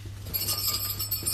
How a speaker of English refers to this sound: There's two bells. They sent me two bloody bells. Two bells. Yeah, so we can all ring them. Where's your bag? You've got jingle bells,